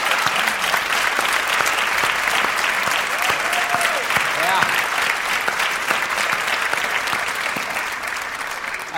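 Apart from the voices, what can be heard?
audience applause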